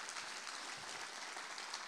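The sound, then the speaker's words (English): A church audience claps for first-time guests, dense overlapping applause filling the space with a bright, continuous patter that holds even in loudness throughout, with no voices standing out. “I want to start off by giving all of our first-time guests a round of applause.”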